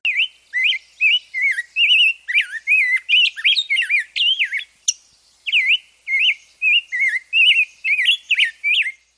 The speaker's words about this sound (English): and you have a bird guaranteed to brighten any May morning. If you miss a migrating warbler or two in the spring, well, the rose-breasted grosbeak can certainly make up for that.